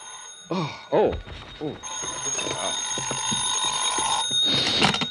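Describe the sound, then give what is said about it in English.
A telephone rings in the morning: a loud, continuous bell, a bright metallic jangle that starts after a brief bit of voice and keeps going to the end, with faint talk beneath it. “I guess I was still thinking or dreaming about it when my phone rang the next morning.”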